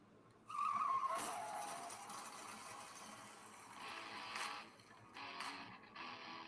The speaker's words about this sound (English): With the car crash at the beginning? Yep. I just love that.